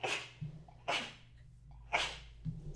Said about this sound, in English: Test multiple sneezes. We'll be able to see what it picks up.